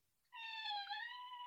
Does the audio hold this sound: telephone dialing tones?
no